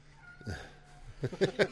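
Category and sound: animal, cat meowing loudly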